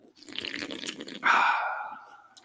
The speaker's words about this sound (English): …'s the only one who did a decent sip with me. I did a sip.